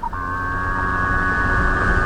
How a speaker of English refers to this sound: So what you'll hear is an actual mink whale, and you'll hear me replying as if I'm in conversation with a minky whale.